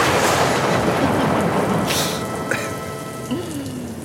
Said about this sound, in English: just sample the rain. And then I did like three different thunderbolts